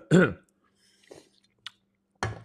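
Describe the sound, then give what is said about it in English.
Quiet mouth sounds of someone sipping a cold, fizzy drink: a short voiced gulp, soft wet slurps and a click, then a breathy burst at the end. No one speaks. “I just had a sip of a drink. A beverage. Yeah, a beverage. A cold, right? Fizzy beverage.”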